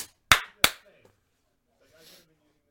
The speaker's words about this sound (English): No, clap.